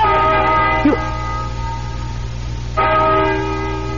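A deep, resonant bell tolls twice, slowly, each loud stroke ringing out with rich overtones and a long, humming decay that lingers between strikes. No one speaks.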